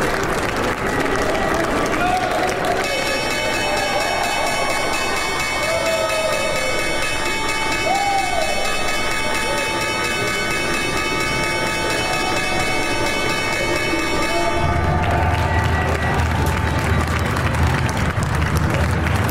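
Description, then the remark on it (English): Steady applause and crowd noise from the New York Stock Exchange trading floor at the morning opening bell, with a loud electric bell ringing continuously for about twelve seconds before cutting off, leaving cheering and a low rumble. “You are looking at the opening bell over at the New York Stock Exchange this morning.”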